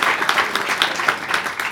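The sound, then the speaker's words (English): An audience applauds the band steadily, a dense wash of many hands clapping with scattered sharper claps standing out, fairly loud and sustained with no talking over it. “And of course, although we pay them for their professional services, a big round of applause also for our band.”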